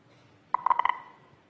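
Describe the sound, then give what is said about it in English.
A quick run of about six short, clear electronic beeps at a steady mid-high pitch, each marking a sprinter's finish time, including Bolt's and, with the last beep, Owens'. They are bunched within half a second and trail off into a soft hum, with no voices. “Rather than the last beep, Owens would have been the second beep. Listen to it again.”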